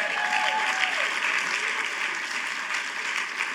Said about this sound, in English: I feel like preaching. Anybody feel like applauding?